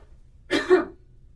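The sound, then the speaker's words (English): A single short throat-clear with a rough cough-like burst, caused by a tickle in the throat, lasting about half a second, followed by quiet room tone. No one speaks. “Hopefully that wasn't loud enough on the Cough microphone. break. Hopefully that was okay. I had like this weird tickle in my throat.”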